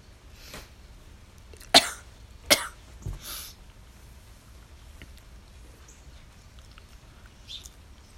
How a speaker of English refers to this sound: Yeah, like, yeah, I'm coughing a lot, but it's because my lungs are shit from smoking too much.